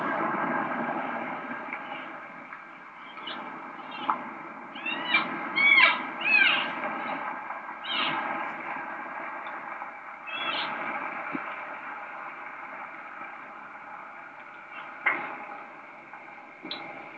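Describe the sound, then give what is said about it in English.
Scattered snaps and cracks of branches breaking as an animal crashes through timber, a handful of sharp bursts over steady hiss, with one cluster of louder crackling midway. No one speaks. “Okay, you can hear the branches breaking, the limbs breaking.”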